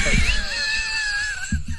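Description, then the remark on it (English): A man who smells gas lets out a loud, sustained high-pitched scream that wavers slightly in pitch for over a second, with some low rumbling thumps and background noise underneath. “is over here screaming that he smells gas.”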